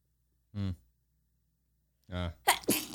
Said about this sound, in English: I have to sneeze. Hang on.